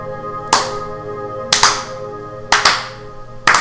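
A slow clap: four sharp, loud handclaps spaced about a second apart, a couple of them slightly doubled, over a steady low humming background with no talking.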